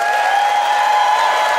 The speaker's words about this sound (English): It is up to you, audience, to pick a winner by applause.